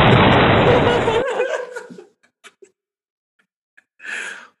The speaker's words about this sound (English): Explosion.